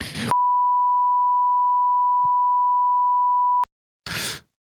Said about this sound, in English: Wait, did that not beep? Ooh, it beeped. It definitely beeped. It's just one long beep.